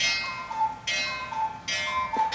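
A cuckoo clock in a house ticks steadily, with bright clicks returning about every second over a faint ringing tone, moderately loud, no voices.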